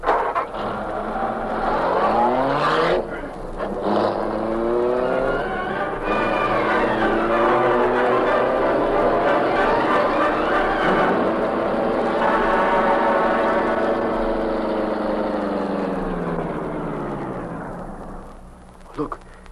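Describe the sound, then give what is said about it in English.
A car engine starts up and revs hard, accelerating loudly with rising and falling pitch as the vehicle pulls away, then fades out near the end. “He's going toward a car in the driveway.”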